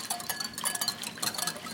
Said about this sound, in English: So everything is now in my dressing, the ginger, chili, lemongrass, I've got a little fish sauce, lime juice, all that beautiful grapefruit juice, and I'm gonna just drizzle in about 2 tablespoons of oil while I whisk.